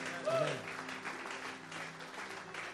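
An audience applauds steadily, a dense wash of many hands clapping that holds at an even level for the whole few seconds, with a faint voice or sustained tone underneath near the start.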